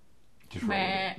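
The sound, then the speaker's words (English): A person's voice imitates a goat's bleat: one short, nasal, wavering call rising out of near silence, fairly loud, lasting about half a second. “one just comes flashbacks as you hear this sort of like rumbling, bleating noise as you're coming up on it.”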